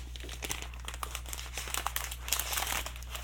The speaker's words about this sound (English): So I'm going to pull off the plastic that's on here.